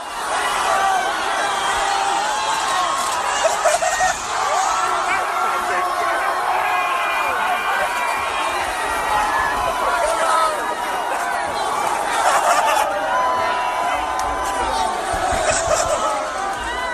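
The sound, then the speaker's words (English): A large crowd in Philadelphia cheers and shouts continuously as about eight men flip over a car, a dense wall of many voices throughout, with a few brief thuds and louder whoops rising out of the din. “So I don't know if you can hear they're cheering, and what they're cheering is they flipped over a car, a bunch of guys, about eight dudes flipped over a car.”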